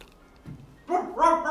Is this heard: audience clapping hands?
no